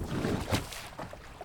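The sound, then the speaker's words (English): A Viking rowing boat's oars dip and pull through water, with a louder splash partway through and softer sloshing strokes around it, with no talking. “Okay, you've got a sword. We'll get on the boat then.”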